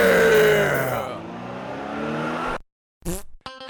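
A loud car engine revs hard and pulls away, its throaty pitch sliding and fading over a few seconds, then a brief pause and a short burst of sound.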